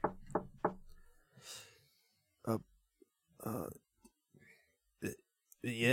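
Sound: knocking on a door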